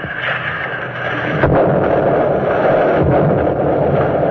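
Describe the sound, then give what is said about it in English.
Muffled underwater explosions of depth charges dropped and fired from throwers of a destroyer escort, exploding at their set depths: a loud, continuous low roar broken by a couple of heavier booming thuds, with churning water upheaved from below throughout and no voices. “The charges explode at their set depths, and the DE bounces on the waters upheaved from below.”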